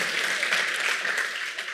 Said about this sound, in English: Happy Martin Luther King Day weekend. My name is, yes, give it up for that. That's certainly worthy of our applause.